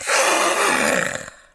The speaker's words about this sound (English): but you see a glint of something head towards the door, and just as you pull it just enough so it's closed, four claws latch into the side of the door, accompanied by a roaring growl.